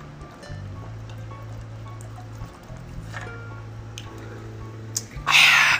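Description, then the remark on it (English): Someone takes a drink of water, recorded on a phone, with quiet sips and swallows over a low steady hum, then a short louder rush of noise at the end. “I'm going to take a drink of my water. So if you hear me drinking my water, I apologize.”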